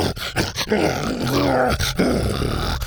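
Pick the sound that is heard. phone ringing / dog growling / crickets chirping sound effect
dog growling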